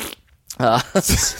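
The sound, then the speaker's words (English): A voice imitates a fart, blowing a buzzy, sputtering raspberry, then a couple of shorter wet bursts trailing off within about a second. “Yeah, just the fart noise.”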